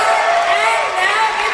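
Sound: basketball crowd cheering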